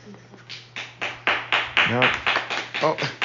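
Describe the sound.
An audience claps in a steady, rhythmic beat, about three or four claps per second, sharp and fairly loud, while a voice briefly speaks or calls out over the clapping.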